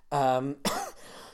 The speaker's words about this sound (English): what kind of cough is that? Oh yeah, don't worry.